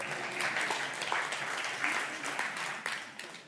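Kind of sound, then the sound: crowd, audience applauding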